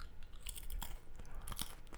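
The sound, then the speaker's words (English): Crunchy chewing of crunchy hot dogs, with repeated sharp crackling bites, steady and loud with no talking. “My world famous crunchy hot dogs that come in the loudest bag of all time, so people know, they hear the crinkle crinkle of my bag and they think, oh, that was my idea.”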